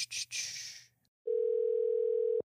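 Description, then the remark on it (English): A brief burst of bright, hissy noise fades out, then after a short pause a steady, loud telephone dial tone hums continuously for about a second before cutting off abruptly, as a call to a friend is placed through a mixing soundboard that records it. “Now, the cool thing about this new soundboard for mixing all this stuff is we can actually phone a friend and it can record all at the same time.”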